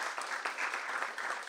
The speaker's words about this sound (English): I'm going to give her a round of applause.